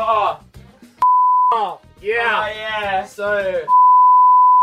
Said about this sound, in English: We were doing a funny bit and now she's going to be beeped. Beeps are funny. Yeah, but that was a funny bit without a beep.